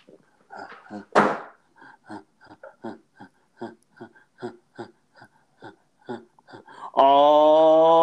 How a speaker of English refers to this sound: All right. Maybe I'm going to close the door for you. Okay.